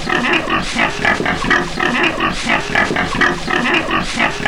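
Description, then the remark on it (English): A pig oinks and grunts loudly and continuously, a rapid run of snorting calls with no pauses and no voices. “The pig is back.”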